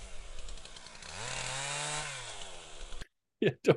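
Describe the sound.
A gas chainsaw engine rumbles and revs, rising to a sustained high whine before dropping back, then cutting out abruptly; brief bursts of voices follow in the silence.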